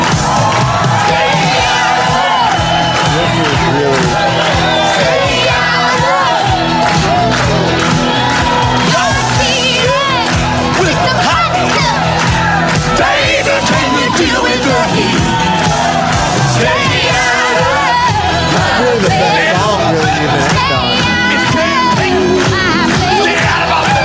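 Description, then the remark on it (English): A large live audience of New York City hecklers, paid to heckle, cheers, shouts and whoops continuously after a song, a loud, dense wall of overlapping voices that stays steady for the whole stretch without any clear individual speech. “Again, I'm pausing for 1 second just to remind everyone that this crowd has been set up as a crowd full of the New York City's best hecklers.”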